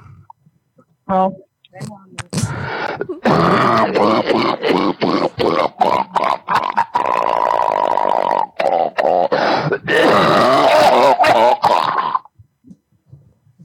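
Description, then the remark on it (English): A person coughs and hacks loudly for several seconds, harsh throaty bursts running together with grunting, strained vocal noises, then stops abruptly. “I think you got COVID out there coughing like that, and man, like, you gotta go get them monoclonal antibodies.”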